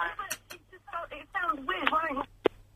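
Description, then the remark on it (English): A thin, phone-filtered voice of a caller to a live radio phone-in talks briefly, then one sharp, loud click cuts in as the caller puts the phone down, leaving only faint line hum. “And they put the phone down there, as people often do.”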